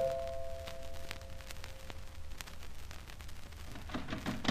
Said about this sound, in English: Then came the chimes at my door.